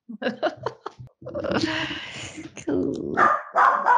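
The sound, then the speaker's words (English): Several dogs bark excitedly at 8 p.m. as they are called to go outside, starting with a quick burst of sharp barks and then a continuous, overlapping racket of barking and yipping, with some voices mixed in. “Okay, now these dogs are lit.”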